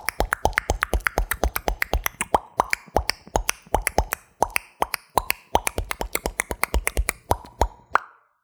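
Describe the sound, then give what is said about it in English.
Rapid mouth-made beatboxing of sharp tongue clicks and pops in a steady, driving rhythm, with occasional brief pauses. The clicks are crisp and fairly loud, with no talking over them. “Mine is that I can beatbox with clicking sounds, like with your tongue and your mouth.”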